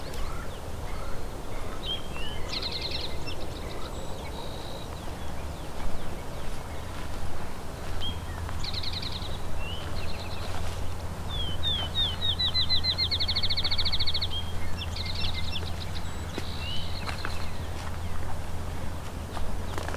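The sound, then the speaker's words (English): A field sparrow sings an accelerating series of clear whistled notes, with other bird phrases scattered around it and a steady low rumble and rustling footsteps underneath. “Field sparrow.”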